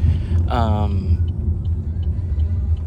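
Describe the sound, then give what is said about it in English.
Steady, heavy low rumble of a car engine and road noise from inside the vehicle, continuous throughout, with a brief voice sound rising near the start. “We've been in the car for 10 minutes already.”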